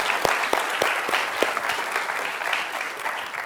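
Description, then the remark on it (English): Audience applause for a guest, honoring his impact on students: a steady wash of many hands clapping, with sharper individual claps popping out in the first half, holding a fairly even loudness for several seconds without any talking. “so I'm glad to have him here, and let's give him a round of applause for the impact that he's had on students.”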